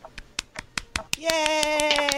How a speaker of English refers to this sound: Yay! Applause is all around. I am hand clapping.